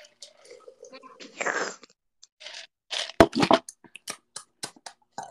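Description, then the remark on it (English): A short, airy slurp from a drink, followed by a few sharp clicks and mouth noises. “Okay, but, I forgot to slurp in.”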